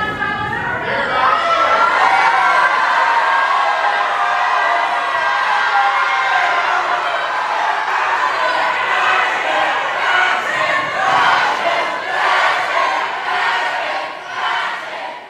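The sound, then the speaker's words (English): A crowd in the galleries of the House chamber erupts in loud, sustained shouting and rhythmic chanting, including shouts of 'fascists', when Representative Pearson's vote comes down; many voices overlap in a dense roar that holds steady with no single speaker standing out. “when Representative Pearson's vote came down, the galleries really exploded. It was the loudest I have ever heard inside the House.”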